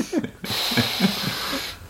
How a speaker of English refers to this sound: Oh man, I gotta like, I gotta do some breathing exercises before I start into this.